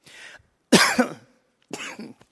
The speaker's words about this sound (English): Choke on my cough drop. That's ironic.